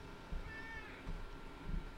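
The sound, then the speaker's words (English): A male cat meows loudly and insistently, a drawn-out, high-pitched yowl, with no talking over it. “The only thing different is that he is screaming at me all the time.”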